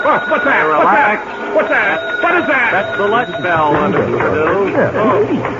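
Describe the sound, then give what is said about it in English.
A lunch bell rings steadily throughout at the Sleepy Time Laboratory, a continuous high metallic tone running beneath a busy, overlapping wash of voices. “That's the lunch bell”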